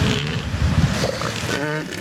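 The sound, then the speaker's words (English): Elephant seals bellowing their mating calls: loud, deep, guttural pulses that rumble on continuously, ending in a harsher, honking call with a rough, buzzing tone. “Here's elephant seal mating again.”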